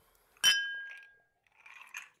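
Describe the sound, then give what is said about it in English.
Two drinking glasses clink together once in a toast, a bright ringing tone that hangs and fades over about a second, followed by a soft, brief shuffling or sipping noise. “I drink to that. Cheers, sir. Cheers.”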